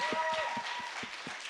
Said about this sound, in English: Can we give them a quick another round of applause? Можете, пожалуйста, поаплодировать им.